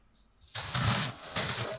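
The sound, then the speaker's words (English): Dice rattle and tumble across a hard surface in two clattery bursts close together, separated by a brief pause, with no voices; the dice are rolled for a survival check and come up 12. “Man, that's a dice roll for sure.”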